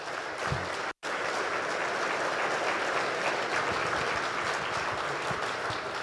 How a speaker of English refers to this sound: So for me, I thought this was, no offense to other panelists, I thought it's one of the better, best panels of the day. So let's give them a big round of applause.